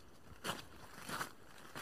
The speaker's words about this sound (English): Oh, in the woods? Eerie footsteps walking behind you.